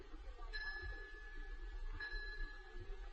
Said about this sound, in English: The bell invites me. Hear it not, Duncan, for it is a knell that summons thee to heaven